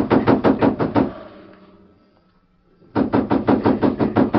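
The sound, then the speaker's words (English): Two bursts of sharp, rapid knocking on a wooden ranch house door, about half a dozen loud raps each, separated by a pause of more than a second. Insistent, with no voices. “A moment later, footsteps sounded across the veranda, and someone knocked sharply on the door.”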